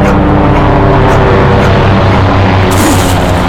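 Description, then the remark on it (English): A helicopter approaches overhead, coming up over a ridge and heading north toward Palmer Station: a loud, steady engine roar with a deep pulsing hum and faint rhythmic thumps, growing brighter and harsher near the end. No one speaks. “The helicopter. Hold on, it sounds like it's coming this way. It's coming up over the ridge.”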